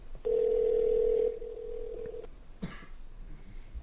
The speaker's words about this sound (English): I'm going to call him real fast.